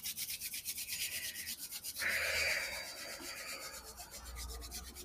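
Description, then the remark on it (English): A deck of tarot cards being shuffled: a steady run of soft, papery rubbing strokes in a quick rhythm, swelling into a brighter riffle burst partway through, then settling into continued quieter shuffling with no talking. “I think we've done enough shuffling for today.”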